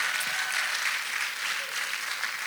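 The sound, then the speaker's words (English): A church audience claps together in a steady, dense wash of applause that holds at an even level for a couple of seconds, with no voices standing out above it. “Yeah, that's worth clapping about for sure.”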